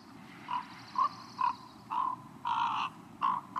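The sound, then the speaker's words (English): A common raven gives a series of about seven soft, warbling calls, a comfort sound made during courtship, some short and some drawn out, in an uneven rhythm over a low, steady background rumble. “And during that ritual, they may make these warbling sounds.”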